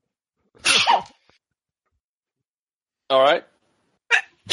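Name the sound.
sneezing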